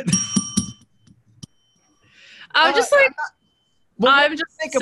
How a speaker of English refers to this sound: Hit that bell.